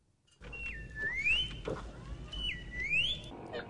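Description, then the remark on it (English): Robotic R2-D2-style whistles and beeps: two matching phrases, each a steady high tone that dips lower and then sweeps up in a bright rising chirp, over a low rumbling background. “Oh, a little R2-D2. Yeah, okay, you know. I like it. You know. Get the tweets and the beeps.”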